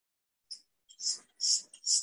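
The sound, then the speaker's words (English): Soft, airy breaths, fairly quiet, come in a few hissing pulses, one short puff followed by three longer, fuller breaths in a steady rhythm. “And mostly from breathing in.”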